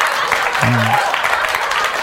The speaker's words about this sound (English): I don't know why that was a funny clap situation, but it is kind of funny.